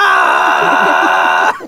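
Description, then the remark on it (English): A loud, sustained screaming sound effect representing a screaming star, shrill and steady for about a second and a half before cutting off abruptly, heard on its own without talking. “But it is a screaming star.”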